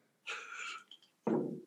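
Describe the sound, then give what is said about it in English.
A sneeze: a sharp, hissy burst of air, a brief pause, then a lower, rougher snort-like exhale. No one speaks. “Uh-oh, there was a sneeze in the building.”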